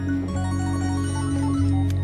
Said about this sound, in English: You hear this chorus of cell phone notifications all over the room, and it's like, I don't know, it's almost like dun dun dun something.